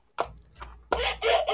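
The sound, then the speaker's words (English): A rooster crows loudly: a short squawk, then a drawn-out, strained cock-a-doodle-doo that breaks into several rising and falling segments. “I was checking to see if you had taken my rooster.”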